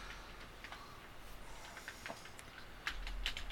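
Quiet, irregular clicking of keys on a computer keyboard, a few taps at a time with short pauses between, heard faintly with no one talking.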